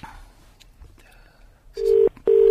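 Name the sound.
telephone dialing and ringing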